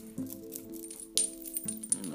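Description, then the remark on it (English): A crystal pendant worn over the shirt clicks and rattles, giving several sharp, bright clicks at irregular moments, with one louder burst partway through. A steady low hum runs underneath. “But then sometimes I wear it out so people can see it, and they hear it clicking.”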